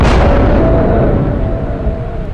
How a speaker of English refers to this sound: I barely had time to shelter behind a thick copse of trees as the whole mountainside trembled. A rumble like the worst storm ever shook me to my bones as an avalanche thundered downslope.